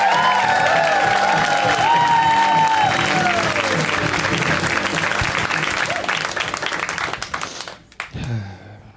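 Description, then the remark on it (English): A comedy show audience applauds loudly for the night's final comic, a first-timer, with dense, continuous clapping and some whooping cheers rising over it, then the applause thins and fades out near the end. “Let's keep it going right now.”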